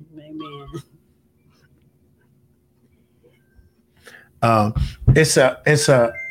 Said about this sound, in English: This is my phone, so don't pay this no mind, you all.